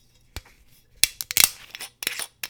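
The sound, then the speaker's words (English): A screw cap twists off a bottle of Monopolova vodka with a string of sharp, dry clicks and crackles, a tight burst in the middle, then a few scattered snaps. No one speaks. “Screw cap comes right off.”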